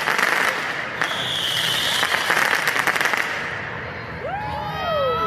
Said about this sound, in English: people were shooting dozens of commercial-grade fireworks straight into the Justice Center